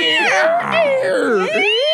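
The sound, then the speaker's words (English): A loud, drawn-out squeaking chair, its shrill whining tones bending up and down in pitch for about two seconds without a break. “Bro, your chair is killing.”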